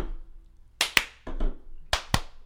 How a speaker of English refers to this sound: Clap like a man. There we go.